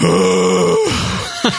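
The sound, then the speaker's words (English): A man's voice imitates a low, drawn-out nauseous groan that slides downward, as if about to throw up, followed by a short breathy grunt, loud with no words. “Like a disgruntled silverback. You know, just fucking breathing heavy, fucking spinning, starting to sweat.”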